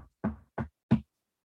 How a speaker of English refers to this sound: You hear a knock on the door?